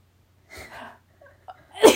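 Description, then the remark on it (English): A person draws a couple of quick, shaky breaths that build up, then lets out one loud sneeze at the very end. “Oh my god, I'm gonna sneeze.”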